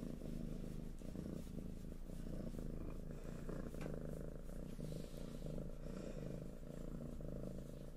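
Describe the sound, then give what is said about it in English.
A Ragdoll kitten named Alice purrs in a steady, continuous low rumble that carries through the whole stretch, with no voices and only faint soft rustles on top. “All the other ones I'm pretty sure are not gonna purr like this.”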